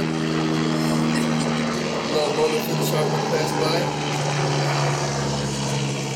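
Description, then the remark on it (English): A low-flying helicopter drones loudly overhead at night, its deep engine hum and rotor rumble holding steady throughout with a slight shift in pitch midway, while muffled voices murmur faintly underneath. “Choppers are low tonight.”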